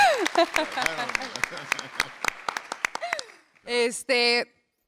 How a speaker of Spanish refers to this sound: Sí, el aplauso, gracias. Gracias.